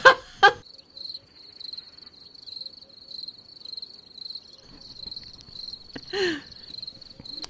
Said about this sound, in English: Scott's not here. That would be his joke. I'm going to cricket Scott's joke, even though he's not here.